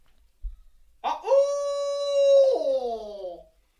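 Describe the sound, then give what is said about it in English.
A human voice imitates an owl with a simple one-note call that a bird gobbles at: one long, drawn-out hoot, a steady, mid-pitched note held for over a second, then sagging lower and trailing off. No other sounds or talk. “there's so many other sounds owls make”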